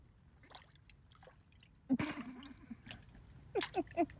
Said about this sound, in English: Okay, let's let the rain go.